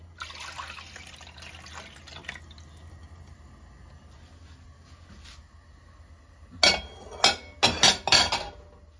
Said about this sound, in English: Now we're going to add into our corn oil our 400 grams of orange juice.